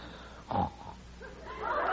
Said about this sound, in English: How do you like that? Snores off key. Well, he's dead to the world.